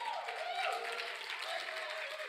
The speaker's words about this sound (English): You may be seated. Come on, give the Lord a hand clap of praise.